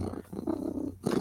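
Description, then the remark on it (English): A person imitates a cat's purr with a low, rolling rumble that pauses briefly, then resumes louder for a moment. “Baby, if I'm purring, I'm a happy girl.”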